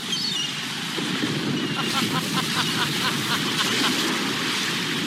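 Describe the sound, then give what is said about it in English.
Water washes and slaps steadily against a wooden boat hull in a constant rushing wash, with a quick run of rhythmic knocking pulses joining in over the second half. “Not so calming sound, though, would be waves thrashing against a wooden boat.”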